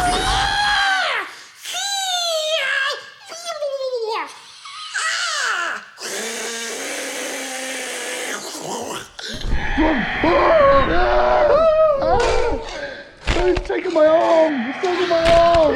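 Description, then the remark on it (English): A voice imitates a pterodactyl with a series of shrill, rising and falling screeches, some harsh and breathy, repeated over about fifteen seconds with short gaps between bursts. “Oh my God, what noise does a pterodactyl make?”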